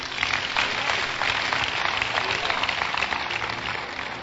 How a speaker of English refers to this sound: Clap for Jesus.